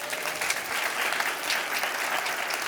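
A crowd applauds steadily, a dense wash of clapping that holds at an even, fairly loud level throughout with no voices standing out.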